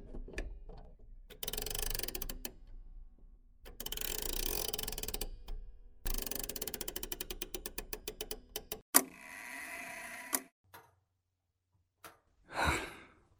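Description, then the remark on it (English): A clock mechanism clicks and ratchets, with bursts of gear-like whirring and a quick run of rapid ticks, followed by a soft breathy sigh near the end. No one speaks. “I mean, clocks don't just measure time, but they keep us in the moment.”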